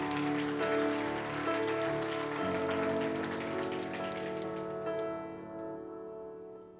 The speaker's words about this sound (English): But we know that the hope of Jesus Christ is greater than any situation on the earth. Can we clap our hands if we believe that today?